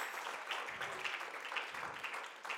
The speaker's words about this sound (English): Come on, clap your hands to the Lord together.